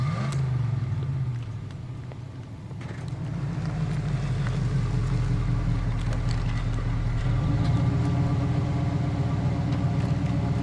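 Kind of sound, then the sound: vehicle, vehicle engine running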